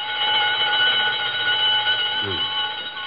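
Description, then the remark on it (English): A burglar alarm on a door rings loudly and continuously at 7:32, a steady, shrill electronic tone that holds without pause from start to finish. “burglar alarm on Bernstein's first door. It always goes haywire at 7:32”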